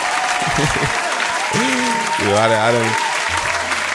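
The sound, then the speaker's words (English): A soundboard applause sound effect: dense, steady applause fills the whole stretch, a loud wash of many hands clapping at once, with a few voices and cheers rising over the noise. “So it's, you know, let's give everybody a hand clap once again.”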